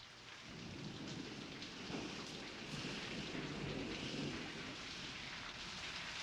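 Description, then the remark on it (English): Steady rain pours down outdoors during a film shoot in a dense, continuous hiss, with a low rumble of thunder rolling underneath. No voices, just the constant wash of rainfall throughout. “We wanted a scene in the rain, and we went out here and started shooting, and sure enough, the rain came.”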